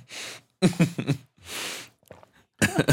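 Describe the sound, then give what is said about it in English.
A person who has just choked on a dry throat gives a series of loud, exaggerated hacking coughs, harsh rasping breaths alternating with voiced, gagging bursts, like a person imitating a cat bringing up a hairball. “Cough that fucking fur balls in the middle of the podcast.”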